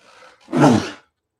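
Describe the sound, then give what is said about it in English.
A single loud, explosive sneeze bursts out after a brief breathy intake, then cuts off into silence. “Whoa, that was a cerveza sneeze if I ever heard one.”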